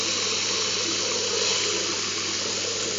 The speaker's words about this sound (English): And are you getting hot and cold water through the taps?